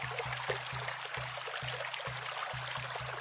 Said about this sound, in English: As they made their way through the dense bushes, they soon realized that they had reached a river. The river that all souls must cross before reaching Mictlan. But this was no gentle river. The current was loud and violent and menacing.